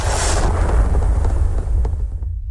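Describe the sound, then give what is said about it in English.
A helicopter carrying a Marine door gunner crashes into the ground in a loud, sustained roar of deep rumbling and crunching bursts, with sharp cracks scattered through before the noise cuts off abruptly. “And then we hit the ground.”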